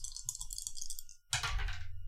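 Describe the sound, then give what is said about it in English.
Dice clatter and rattle in a bright, steady shake as they are passed between players taking turns in a game, then a brief pause before a louder burst as they tumble and roll across a hard surface. No one speaks. “Let's keep passing the dice.”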